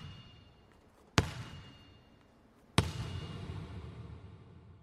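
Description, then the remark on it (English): A basketball is slammed hard on the floor twice by a man in the corner of a room with bleachers, recorded with a microphone held above the ball. Each sharp impact rings out with a bright metallic ping as the ball rises, and the ping slowly decays. No one speaks. “But then we went into the corner of the room, and I got elevated on the bleachers, and I had my microphone above the ball, and the guy slammed the ball on the ground, and then as the ball was coming up to my microphone, you hear the ping.”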